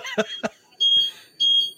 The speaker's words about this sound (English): Oh no! Oh no! The alarm in this place got tripped just now.